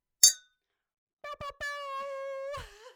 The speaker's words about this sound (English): One more cheers. Yeah, there we go. We're drinking